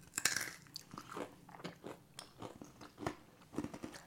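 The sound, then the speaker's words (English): Crunching as someone bites into a crisp fried snack coated in crystallized brown sugar, sharp brittle cracks followed by a steady series of chewing crunches over several seconds, no talking. “So it's very crunchy.”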